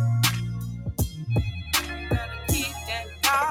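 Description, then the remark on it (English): A phone rings with a musical ringtone: punchy drum hits over a deep bass line and bright, warbling synth tones, playing loud with no one talking. “Wait a minute. You calling my phone?”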